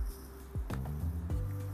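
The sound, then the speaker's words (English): Someone sips water: a few soft, wet mouth clicks and a gulp spread over a couple of seconds, fairly quiet, with no talking. “So yeah, I'm just gonna take a sip”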